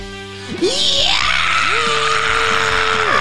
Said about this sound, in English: Yeah! One voice screaming today. Screaming.